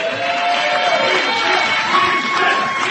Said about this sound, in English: Yeah. We had our own cheering section. It was cool.